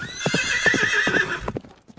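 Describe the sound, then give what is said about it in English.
A horse whinnies loudly with a shaky, rising-and-falling neigh over a steady clip-clop of hooves, which continues briefly after the whinny fades out, all clear with no talking. “Now we're getting horse hooves again.”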